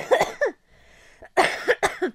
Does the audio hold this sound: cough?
yes